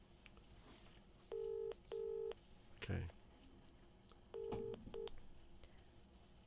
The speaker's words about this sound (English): But let's call her in. Do I have to do the call sound? Yeah. For fuck's sake. You have to do your own sound effects in the show. Bring, bring.